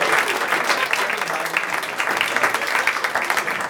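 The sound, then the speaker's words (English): A crowd applauds steadily for comedians Baron Vaughn, Adam Cayton-Holland, Kyle Kinane, Andy Wood and Timmy Williams as they make their way to the stage, a dense, loud wash of many hands clapping at once with no pauses, holding an even level throughout. “One more round of applause for Baron Vaughn, Adam Cayton-Holland, Kyle Kinane, Andy Wood, and of course, Timmy Williams.”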